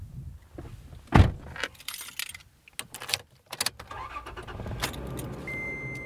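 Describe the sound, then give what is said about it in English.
Two people climb into a pickup truck to drive a few miles down a dirt road: a car door thuds shut, keys jangle with a few clicks and rustles, then the engine hums steadily and a soft chime sounds. Nobody speaks. “Randy and I pile into his pickup truck and drive a few miles down a dirt road”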